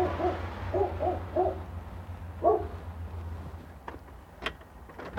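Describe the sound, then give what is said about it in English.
A muffled dog barks from behind the door of a house, a quick string of four or five hollow woofs followed by one more, then a few sharp clicks and knocks over low background rumble. “Walking up to the door. I hear a dog.”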